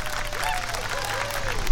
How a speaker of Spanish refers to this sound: Qué aplausos tan eufóricos